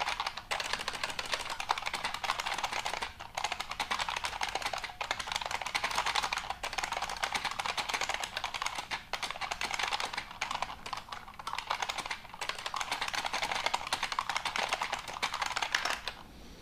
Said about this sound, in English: See how I hit a question mark and shift with both my right finger? That's a mistake. I should have hit shift with my left finger and question mark with my right finger. So even typing 116 words a minute, which I do, I can still do it better, right?